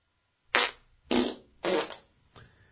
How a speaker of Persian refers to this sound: دکمه گوز من کو؟